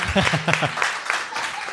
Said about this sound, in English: I appreciate it. You can clap.